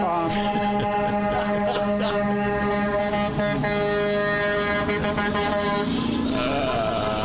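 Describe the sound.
Several car horns blare at once in a sustained, overlapping chorus, honking in support of the Chicago Teachers Union on Day 7, loud and steady for several seconds, with a faint murmur of voices beneath.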